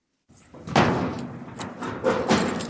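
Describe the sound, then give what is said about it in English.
A heavy, gashed metal door at an electrical substation in Ukraine creaks and scrapes open to show the equipment inside, with a few loud clanking thuds and grinding rattles over about two seconds, then a final rough scrape. “He opens a gashed metal door to show us the equipment inside.”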